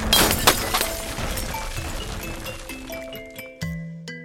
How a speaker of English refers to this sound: I imagined the clock, the hour hand specifically, ripping from its glass and copper casing, and in an explosion of gears and metal.